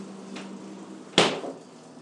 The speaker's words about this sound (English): Shut the freezer door.